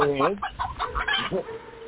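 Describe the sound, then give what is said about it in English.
A chicken on the streets of Norristown clucks in a quick, uneven series of short calls, starting with a longer drawn-out squawk, then choppy bursts of clucking that trail off near the end. “Where dogs, cats, and other chickens fear to tread.”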